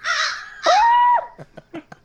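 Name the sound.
crows cawing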